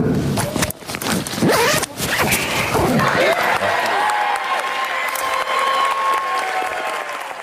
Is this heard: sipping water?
no